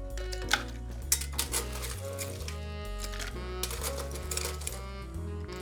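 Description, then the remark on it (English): Ice cubes clatter into a single-serving blender container holding lime juice, in a rapid burst of hard, clicking knocks, some louder than others, over a steady low musical hum and with no one speaking. “And I'm gonna pour this into my, this is kind of like a single serving blender container, which makes life easy. And we'll fill that up with some ice.”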